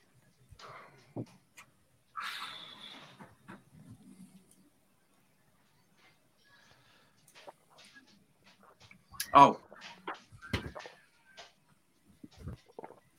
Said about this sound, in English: Shut the door if you're going to be kicking the ball about. Shut the door.